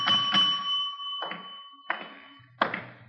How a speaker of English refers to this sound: Nobody at the desk. I'll ring the bell.